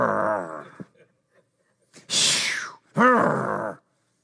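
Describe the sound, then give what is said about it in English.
A person imitates growling with groaning vocal noises in three bursts: a low rumbling voiced growl, then a harsh breathy rasp, then another strained moaning growl, fairly loud with short pauses between. “Growling.”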